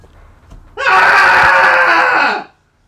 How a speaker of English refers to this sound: But here we go with the cathartic scream, everybody. Join along with us in 3, 2, 1.